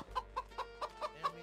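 A chicken clucking sound effect: a quick, steady series of about six short, nasal bursts, heard alone with no one talking.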